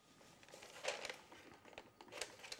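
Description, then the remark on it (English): Stiff paper rustles and crinkles in a quiet run of irregular handling noises, with a few sharper crackles and soft clicks as a paper piano roll is loaded and threaded into place. “Now the roll's loaded, what do you have to do before you play it?”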